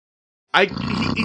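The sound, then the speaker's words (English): After half a second of silence in which a man stops breathing, a loud, rough snore abruptly kicks back in with a snorting gasp, then continues as a steady, rumbling drone. “See, like, he did it again. He's in his, like, not heavy snore phase.”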